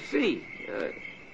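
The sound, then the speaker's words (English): Two low, throaty croaks rise and fade over a steady high chirring of insects, as many frogs call by a pond at night under a full moon, with no one speaking. “When the moon is full like now, there's millions of frogs.”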